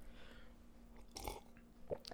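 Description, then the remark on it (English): A wet sip of water right at the mic, a short, deliberately loud slurping burst followed moments later by a softer gulp or mouth click, with no talking. “let me get a sip of water”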